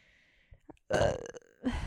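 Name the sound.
burp into the microphone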